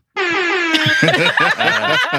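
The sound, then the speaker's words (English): A loud, sustained air horn blast starts abruptly and holds its bright, brassy tone while several voices burst into chatter and laughter over it. “It's like everybody has that sound right, effect. Well, the air horn.”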